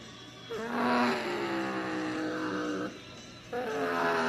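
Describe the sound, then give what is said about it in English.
A pack of stock cars roars past at the Brickyard late in a race, about six cars running nearly four wide for the lead, several engine whines overlapping and shifting in pitch, loud and continuous, with a brief dip before the roar surges back. “4 wide almost for the lead right there. It's a 6-car convoy at the front. And this is big pack racing.”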